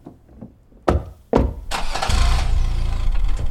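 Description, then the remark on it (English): A car door thunks shut twice, then an engine cranks and turns over, settling into a steady, loud rumbling idle. “I'll drive.”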